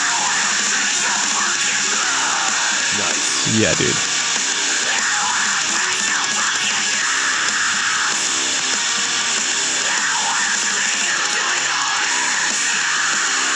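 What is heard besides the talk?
screamed vocals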